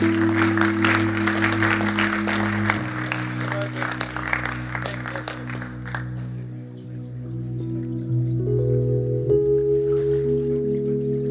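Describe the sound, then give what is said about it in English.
A crowd claps steadily for several seconds, applauding a girl after a prayer for her, before the applause thins and fades, while sustained low keyboard chords play underneath and carry on after the clapping stops. “Let's give her another clap, shall we?”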